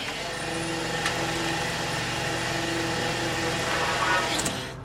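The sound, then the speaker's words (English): The engine of a small green fishing boat idles steadily at sea, twelve miles east of Gloucester, Massachusetts, a constant low rumble with a droning hum that holds throughout before fading slightly at the end. “Twelve miles east of Gloucester, Massachusetts, the small green fishing boat Dolores Louise is the only vessel as far as the eye can see.”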